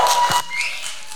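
A crowd at a morning worship service at Grace Summit claps its hands in a dense burst of applause that cuts down sharply after a moment, leaving a softer patter of clapping and a thin steady tone underneath.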